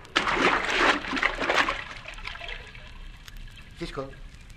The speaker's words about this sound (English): But I'm going to have to swim under the water in case someone is watching from above.